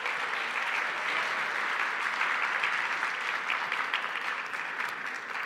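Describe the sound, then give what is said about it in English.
A church audience applauds steadily for the volunteers who served, a dense wash of clapping that holds a fairly even loudness throughout with no voices standing out. “And can we give them a round of applause?”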